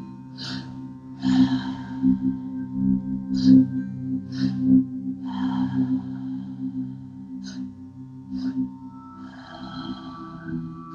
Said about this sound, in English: The last one. Breathing in and out of the mouth, three-part breath, two inhales, one exhale.